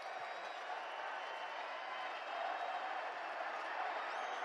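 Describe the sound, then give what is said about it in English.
A large arena crowd at a basketball game cheers a made free throw in a sustained, steady roar that holds at full strength for several seconds, a dense wash of many voices with no single speaker standing out. “Crowd loves it.”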